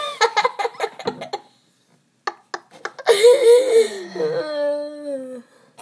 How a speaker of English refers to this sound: Apparently yawns are contagious. Are you yawning? I'm not. I'm, believe it. More yawning. Why are we just yawning?